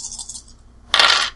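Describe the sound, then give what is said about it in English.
Dice rattle briefly, then clatter loudly across a hard tabletop in one bright burst of clicks before settling. They are rolled for a Dex plus brawl check, with extra dice added from willpower, and give three successes. No one speaks. “That's 3 successes on the roll.”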